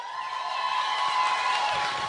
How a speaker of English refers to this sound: Please give a huge round of applause for Gareth Cliff.